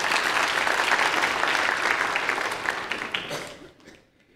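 A round of applause from a crowd, steady dense clapping that holds for about three and a half seconds before fading out quickly.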